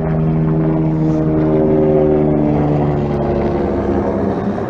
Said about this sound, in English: Let the helicopter fly over me.